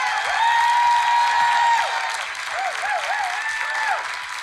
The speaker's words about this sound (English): So those of you who are here in person, would you mind to give a rowdy applause?